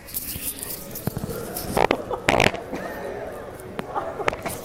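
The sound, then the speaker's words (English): A short, raspy fart rips out in two quick bursts, loud, against a low background of muffled noise and faint voices. “Okay, there's a fart coming up.”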